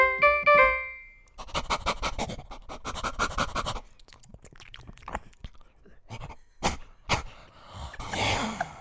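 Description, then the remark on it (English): A person imitates a dog, opening with a short high whine, then a long run of rapid, rhythmic breathy panting, ending in scattered huffs and snorts. No talking. “That's what a dog sounds like.”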